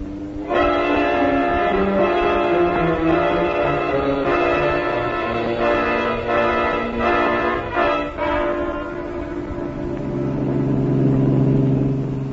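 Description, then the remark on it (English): A loud, continuous car engine roars for about twelve seconds as FBI agents chase another car, its pitch stepping up and down as if shifting gears, then swelling deeper toward the end, with no voices. “pull up as close to that car as you can.”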